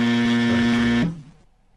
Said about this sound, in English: Tick, tuck, tick, tuck. Buzzer, please.